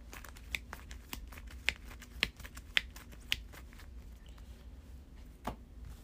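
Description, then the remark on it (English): Shuffling of a deck of cards: a string of crisp, irregular clicks and snaps over about five seconds, some sharper than others, against a low steady hum with no talking. “I will shuffle.”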